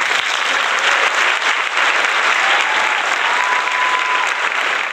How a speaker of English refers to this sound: If we can get some claps in there at some point